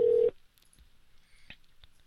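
A single loud telephone keypad tone beeps briefly at the start, then drops away to near silence broken by a few faint clicks.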